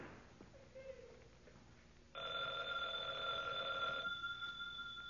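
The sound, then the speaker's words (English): A telephone bell rings once in a loud, steady burst lasting about two seconds, with a bright metallic tone. Before it there is only faint room noise and some soft indistinct sounds. “Fred, telephone's ringing.”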